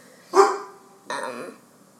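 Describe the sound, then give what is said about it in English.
A dog, Mac, barks twice, two separate moderately loud barks about three-quarters of a second apart, with a short quiet gap between them. “Yeah, Mac's barking right now at some neighbors or something.”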